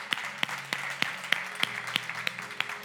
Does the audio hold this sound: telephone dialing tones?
no